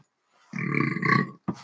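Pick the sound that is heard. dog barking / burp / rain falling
burp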